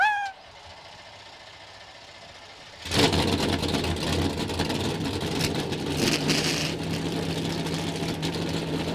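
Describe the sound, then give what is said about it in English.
After a couple of seconds of near silence, a field of race car engines abruptly fires up together into a loud, sustained roar at the start of the Auto Club 400 at Auto Club Speedway, with revving that swells and dips over the din. “Drivers, start your engine!”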